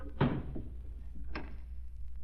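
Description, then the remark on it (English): A door shuts with a solid thud, followed a second later by a sharper click as it is locked with a key, then a faint clatter at the end. “Here's the key. Lock the door behind us.”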